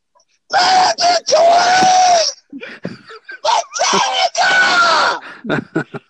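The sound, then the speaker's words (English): A man screams loudly in several long, strained, raw bursts, with short choppy gasps and yelps between the sustained cries. “I'm going to scream”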